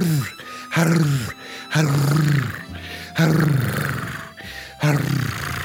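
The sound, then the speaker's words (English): A person makes a series of about five loud, low throat growls, each a rough, rumbling burst that swells and fades, separated by short pauses, with no talking. “You just induce a throat growl.”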